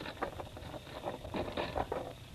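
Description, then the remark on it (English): Steady rain patters down in a soft, even hiss, with scattered faint drips and splashes rising out of the wash and no voices. “Let me in out of this rain.”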